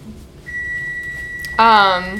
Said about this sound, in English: I didn't want the beep to interrupt you.